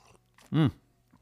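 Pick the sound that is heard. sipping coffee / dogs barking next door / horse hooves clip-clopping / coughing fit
sipping coffee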